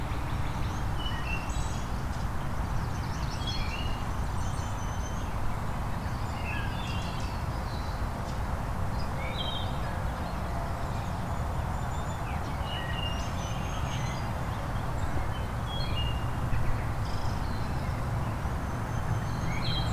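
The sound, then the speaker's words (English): A northern waterthrush, a type of warbler, sings in sunshine, its bright, emphatic chirping phrases repeating amid a busy chorus of other birds over steady low outdoor noise, with no voices. “And there's our northern water thrush, which is a type of warbler, not a type of thrush.”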